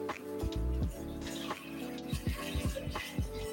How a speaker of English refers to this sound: And now for the next step, we're just going to add our cooking broth to it. That's the vegetable stock with the gochujang. I'm going to pour it in.